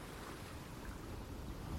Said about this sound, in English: Feel the cool waves lapping over your feet.